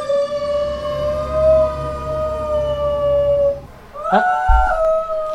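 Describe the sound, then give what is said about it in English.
A dog howls in long, wavering tones alongside the wailing siren of a passing fire truck at a loud, busy street corner in San Francisco, the howl rising and falling over steady low street rumble before a final sharper yelp-like howl near the end. “And my dog's gonna start howling.”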